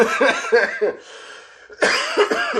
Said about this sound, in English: Even though I just coughed there, that's just because my throat's getting dry.